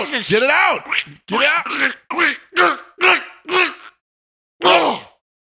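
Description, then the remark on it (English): A caller on a WFTR radio call-in show imitates a duck, letting out a quick run of about six loud, nasal quacks, then a short pause and one final quack. “You got a duck in your throat!”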